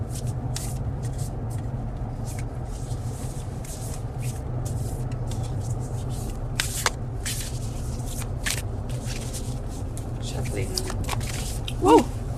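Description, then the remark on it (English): A deck of guidance cards being shuffled: a string of quick, crisp papery flicks and riffles in an irregular rhythm, fairly soft, over a steady low background hum. “Alright, I'm shuffling the cards.”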